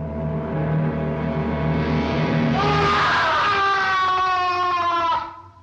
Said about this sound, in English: He shoots Igor, and Frankenstein discovers the body of Igor. He screams, goes on. Oh, that scream that he does when he discovers Igor?